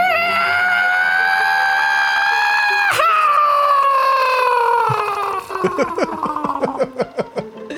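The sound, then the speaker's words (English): A voice imitates the scream of a space banshee, a long, shrill, wavering scream that holds steady, dips, then breaks into choppy, stuttering bursts as it fades into gasping, laugh-like sputters. “The space banshee's most defining trait is its hideous scream. What does it sound like?”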